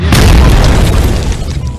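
A loud explosion sound effect from a bomb button, a heavy low boom that rumbles on for nearly two seconds and fades slightly at the end, with no talking over it.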